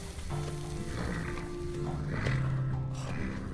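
Horses make low, drawn-out vocal sounds, a murmuring whinny or snort, over a steady bed of outdoor noise for a few seconds.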